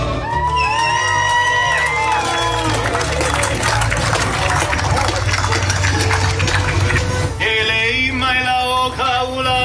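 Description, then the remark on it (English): A big crowd applauds and cheers steadily for the whole stretch as a speaker is brought to the stage, loud clapping mixed with high whoops and sustained shouted voices, the noise staying dense and unbroken. “gentlemen, please help me bring to the stage with a big round of applause”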